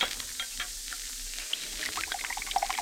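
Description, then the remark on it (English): Del Monte tomato juice pours into a glass with a steady, soft splashing hiss that turns to bubbly, rising glugs near the end. It's fairly quiet, and no one speaks. “Hey, Del Monte tomato juice. That's for me. Opener. Glass.”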